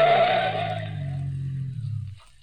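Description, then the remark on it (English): Car tires skid with a loud screech and hiss that fades over a couple of seconds as the car rounds a curve and cuts off to the side of the road, while a low engine rumble carries on underneath before cutting out. “I rounded the turn and then cut off to the side of the road.”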